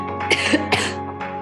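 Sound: woman coughing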